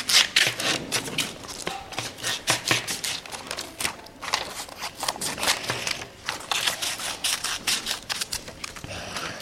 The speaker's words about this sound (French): Je découpe des feuilles. La réponse, c'est un ciseau.